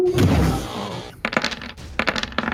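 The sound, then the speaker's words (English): A die rolled for an attack clatters onto a hard tabletop, then skitters and bounces in a quick series of sharp clicks before settling, landing on 19. Fairly loud, with no voices. “19 on the dice.”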